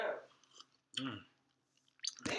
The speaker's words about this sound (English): That was a slurp.